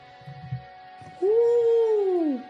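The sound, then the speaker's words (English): A person imitates an owl, attempting an alien-style goodbye: one long, drawn-out owl-like hoot, a steady mid-pitched tone that slides down at the end, after some soft low murmuring. “No, that was just an owl noise you made.”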